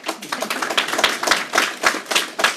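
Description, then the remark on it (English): A short round of applause: brisk, crisp hand claps in a steady, overlapping rhythm, moderately loud, with no voices over them. “So I will leave that, and we ask for a spontaneous round of applause.”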